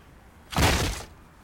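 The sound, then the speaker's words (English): A door is kicked in with a single front kick that blows it off its hinges: one loud crash, a heavy thud followed by about half a second of harsh, splintering clatter that quickly dies away. No one speaks. “The strength of that front kick literally blew the door off its hinges,”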